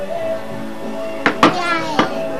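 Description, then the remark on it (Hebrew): A young child's voice mimics a cat's meow when asked how a cat goes, in a drawn-out, tonal cry, moderately loud, with a few brief clicks and knocks near the end. “איך עושה חתול”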